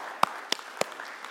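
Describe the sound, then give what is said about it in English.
Sharp, bright claps ring out three times at a steady, even pace over a faint background hiss, like the scattered opening of audience applause, as an audience claps to celebrate a fundraising total. No one speaks. “Now we can clap.”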